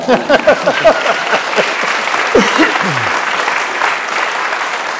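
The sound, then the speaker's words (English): An audience breaks into sustained applause, a dense steady patter of many hands clapping that holds at a fairly even loudness for several seconds, with brief bits of speech-like voices early on. “Yeah, feel free to applaud.”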